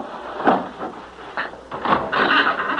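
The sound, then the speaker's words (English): A wooden bolt that fastens the door of an abandoned building is pushed with a few dry knocks and scrapes, then the door swings open with a longer rough, grinding creak. No one speaks. “Now, come on, I'll push open this wooden bolt that fastens the door.”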